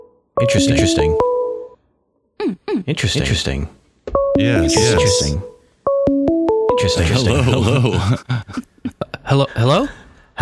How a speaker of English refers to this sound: Caller, you're echoing.